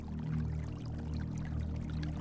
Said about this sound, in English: Tree frogs sing along with the gentle hush of the falling water and gurgling stream.